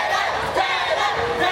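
A crowd of fans screaming together, a loud, sustained, high-pitched wall of shrieks and cheers with no pauses, steady in volume throughout.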